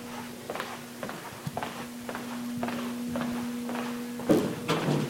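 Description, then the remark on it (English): Steady footsteps thud across a creaky wooden floor in MSU's old Mary Mayo or Morrell Hall, about two steps per second, with a low constant hum underneath and a louder creak near the end. “Old and unique to MSU, filled with creaky floors and memory-stained wood, Mary Mayo and Morrell Hall are some of the most talked-about places on campus, especially during this haunting season.”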